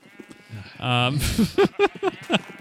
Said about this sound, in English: There's a lot of sheep. Yeah, I keep hearing all the sheep, too.